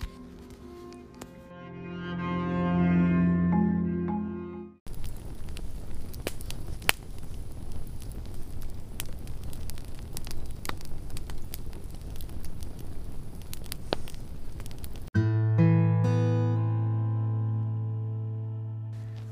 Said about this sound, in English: Tonight, we talk. Around this campfire, thank you for joining me in the camp of the beyond.